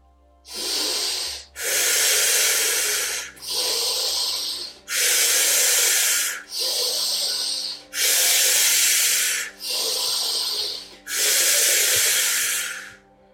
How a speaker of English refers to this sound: And breathing it in through the nose and exhaling all of the air out of your lungs.